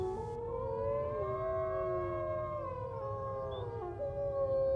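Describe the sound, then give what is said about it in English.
Several wolves howl together in long, overlapping wavering tones, rising and falling steadily over a low rumbling background, with no voices present. “You hear them, Mr. Harker? The wolves?”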